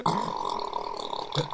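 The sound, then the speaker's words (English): A loud, sustained raspberry blown with the lips, a buzzing mouth-made fart noise lasting over a second, with no talking. “Make a big fart noise, and that gets a 19.”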